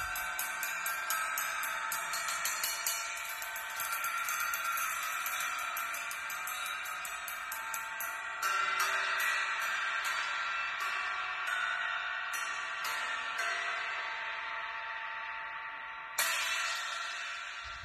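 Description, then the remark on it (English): Bell and crash strikes on sliced cymbals cut to different sizes ring out, opening with a quick run of bright repeated taps over a shimmering wash, then sparser hits with louder crashes midway and near the end. No one speaks. “That bell did not sound good at all, which is okay.”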